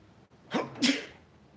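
A single sharp sneeze with a quick breathy intake just before the explosive burst, moderately loud, with no talking around it.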